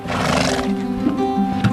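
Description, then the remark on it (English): A horse in a horse yard near Wollongong, used for equine-assisted psychotherapy, whinnies loudly, a long quavering neigh with a breathy, wavering pitch that carries through the whole short moment, with no voices present. “But let's get started in a horse yard near Wollongong, where psychologist Sam Tassany has converted a horse float into an office.”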